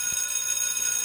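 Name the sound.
bell ringing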